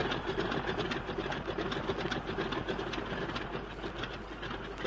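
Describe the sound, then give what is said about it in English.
Cold aircraft engines start, roar and rev steadily, a dense, loud mechanical drone with a fast rattling pulse running unbroken throughout, with no voices. “Don't waste time revving.”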